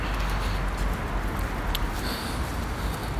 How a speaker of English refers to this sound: I've just gone outside now. There's some traffic and it's a little windy. I hope you can hear me.